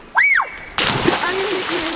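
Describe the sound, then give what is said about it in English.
Kids splashing and swimming in the Severn River, half an hour outside Washington, D.C., in summer: a child's brief rising-and-falling shout, then a sudden burst of steady splashing and sloshing water that continues to the end. “is watching the kids swim”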